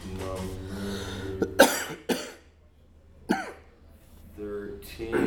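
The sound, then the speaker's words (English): A few sharp coughs from a guest in the background of the Facebook Live show Truth, Love, and Peace break out over a humming, voice-like background, two close together and another a moment later, each a short rough burst at moderate loudness. “That other cough you hear in the background”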